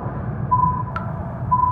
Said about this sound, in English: The sonar beeps more intensely, and I feel myself sweating more and more.